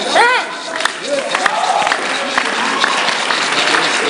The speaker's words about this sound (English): I'm waiting for you to clap better, then I'll tell you.